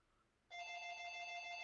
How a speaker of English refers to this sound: Oh no, the phone's ringing. What am I going to do? I'm podcasting and the phone's ringing.